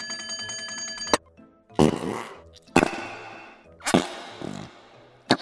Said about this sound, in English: Found my fart putty!